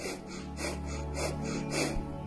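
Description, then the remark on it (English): Sharp, rapid breathing showing how a person breathes when angry: about five quick, forceful breaths in a steady, hurried rhythm, each a breathy rush of air, with no talking. “If you notice, the breathing becomes sharp and rapid.”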